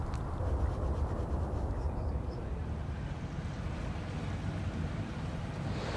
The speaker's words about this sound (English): And that's rather more like these water waves.